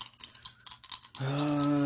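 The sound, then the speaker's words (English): Three dice, rolled for a might roll in a game, clatter and tumble across a hard surface in a quick burst of small clicks, followed by a steady low hum that starts abruptly near the end. “My might was 3, so I got 3 dice to roll.”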